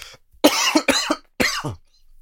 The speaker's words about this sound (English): Apologize with the cough. I don't know. It's got maybe some katsudon stuck in my throat.